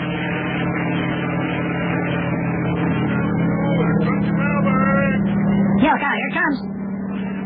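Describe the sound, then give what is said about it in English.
A helicopter bringing mail from the United States approaches overhead near Watley Island; its steady, low engine drone holds throughout and swells slightly louder toward the end, with a brief burst of higher, wavering sound near the close. “Helicopter, here it comes.”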